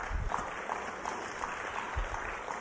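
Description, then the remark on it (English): Light audience applause, a soft, steady patter of many overlapping claps that stays fairly faint and even for a few seconds, with no voices over it. “And all those awake applauded.”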